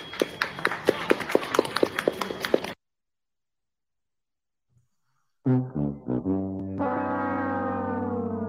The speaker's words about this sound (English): They're going to clap for her.